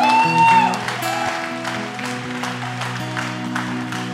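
church audience applauding

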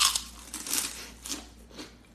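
crunching on pork rinds

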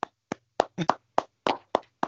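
people clapping

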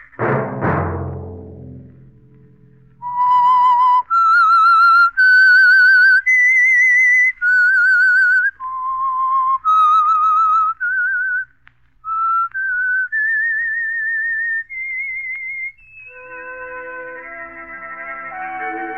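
whistled theme melody

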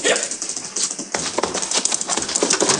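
horse hooves galloping away

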